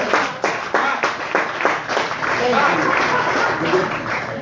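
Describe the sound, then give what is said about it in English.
A group applauds with brisk, fairly loud clapping that starts as distinct rhythmic claps and thickens into a steady wash, with some voices mixed in underneath. “If y'all would just clap it up because that was a difficult feat for me, please.”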